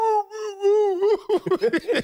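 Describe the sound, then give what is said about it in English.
A human voice imitates a dog's extra long SOS howl, as dogs give when let out in the front yard, holding a steady, mid-pitched wavering tone for about a second before breaking into short, choppy vocal bursts. “I've heard dogs SOS, like you let them out in the front yard and they give that extra long howl.”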